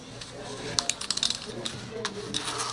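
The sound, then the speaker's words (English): A zipper is pulled in quick ratcheting bursts, a rapid run of sharp clicks, with a few scattered pulls after it over low background murmur. “There's a zipper.”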